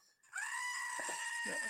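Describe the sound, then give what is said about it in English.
A goat missing one ear lets out one loud, drawn-out scream at a ranch, harsh and nasal with a wavering pitch, on its own, lasting well over a second. “would you echo another one of those screams of you lost that ear? At the Wellings Ranch?”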